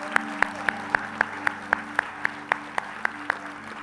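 The audience of Grace Fellowship Church claps in unison: about thirteen sharp, evenly spaced claps at a quick steady beat, over a low sustained hum and tones, with no voices.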